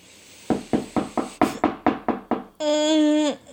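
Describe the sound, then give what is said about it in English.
A rapid series of about ten firm knocks on a door, evenly paced, followed by a brief steady humming tone that cuts off abruptly. “feels like you close your eyes, and the next moment you're hearing a knock on the door.”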